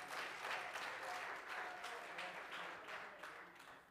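An audience claps their hands unto the Lord as they are being seated, in a dense, steady round of applause, loud and sustained for several seconds before gradually easing, with faint voices mixed underneath.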